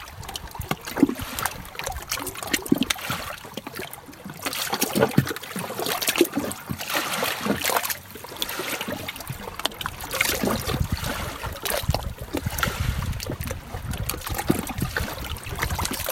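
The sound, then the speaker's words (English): Water laps and splashes irregularly against rocks at Lake Monroe in southern Indiana, a steady wash of gentle slaps and trickles with occasional louder surges, and no voices. “You've been listening to Water on Rocks at Lake Monroe in southern Indiana.”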